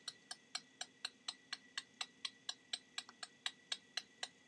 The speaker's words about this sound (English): The clock was ticking.